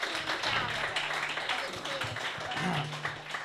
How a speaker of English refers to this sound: Hey everybody, welcome to the Commons Cafe. Give yourselves a round of applause for coming out to this live show.